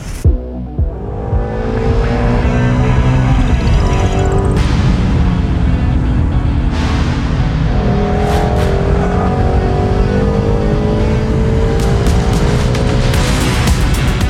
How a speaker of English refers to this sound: Those car sounds were sent in courtesy of Steph.